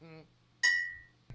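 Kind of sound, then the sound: household object, glass clinking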